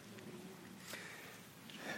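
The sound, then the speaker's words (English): A couple of short, wet nasal sniffs from someone who has been ill all week with a stuffy head cold, with a soft breathy hiss between them and no talking. “Well, yeah, I've had the plague all week, so thus the snuffles, and hopefully I won't have a coughing fit.”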